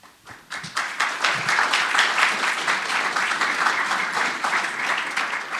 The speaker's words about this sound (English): Can we have a round of applause for all the work that you did,